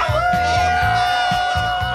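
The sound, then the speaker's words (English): A voice imitates a wolf howl, holding one long, steady high note for about two seconds over a soft, rhythmic low thumping in the background. “You're a wolf.”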